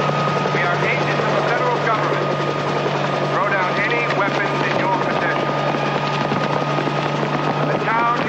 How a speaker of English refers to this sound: They go outside. They're about to hop on their motorcycle when there's a spotlight shining down on them and helicopter blades.